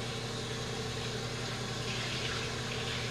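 Cold tap water runs in a steady, continuous rush as a person washes their face, with a faint low hum underneath and no talking.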